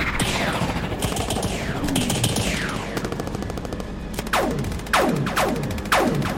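Rapid sci-fi laser blasts fire continuously from an airship's laser turret without reloading amid a dense battle din, with sharp descending zaps sweeping down in pitch over a constant machine-gun-like rattle, loud throughout.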